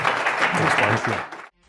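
An audience applauds in a dense, steady wash of clapping that stays loud for about a second and a half, with some voices mixed in, then cuts off abruptly.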